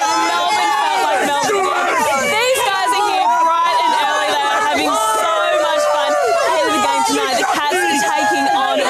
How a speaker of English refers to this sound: from the Today Show when they decided to do a live piece of camera with cheering footy fans in the background. You'll never guess what happened. More than 70,000 fans packed out the stadium.